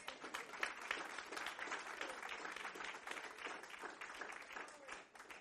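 An audience gives the Lord a round of applause with dense, sustained clapping, steady and fairly loud throughout, tapering slightly at the very end.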